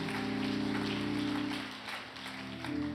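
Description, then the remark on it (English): A church audience claps to thank God for His word, a dense crackling patter of many hands over sustained, held keyboard chords, the applause easing slightly toward the end without any talking. “Would you clap your hands and thank Him for His word?”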